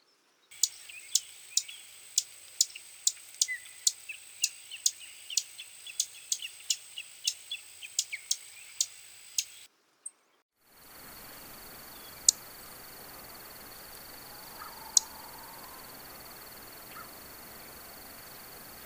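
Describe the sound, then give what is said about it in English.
A series of sharp, high chip call notes from a Savannah Sparrow, repeated irregularly about every half second over roughly nine seconds, then a pause and a few more isolated chips against steady background hiss. “Savannah calls are short chips.”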